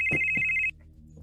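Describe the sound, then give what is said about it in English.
A phone line rings on an outgoing call: a steady, high electronic ring tone, clear, that cuts off abruptly after about half a second, with no one speaking. “Let me make a quick phone call and okay.”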